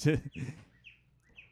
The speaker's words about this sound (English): And the birds are squawking.